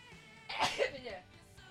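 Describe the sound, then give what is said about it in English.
A single soft sneeze, caused by pollen, bursts out briefly, a quick sharp exhale that fades within half a second against a quiet background. “I just had the sneezes because there's pollen everywhere.”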